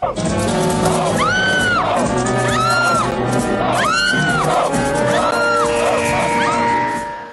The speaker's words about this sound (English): the Power of Krull cliffhanger with Romana's screaming at the man in the costume